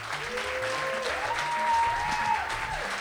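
A crowd at an Outspoken storytelling show, recorded in November 2014, applauds steadily for a few seconds to welcome a speaker. It is a dense wash of clapping at an even loudness with no voices standing out, while a faint sustained tone glides beneath it.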